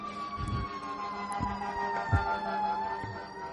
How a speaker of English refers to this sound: Would you even think it was a Hillbilly Nerdcast podcast if there weren't fire trucks? And we just saw 4 fire trucks go by here.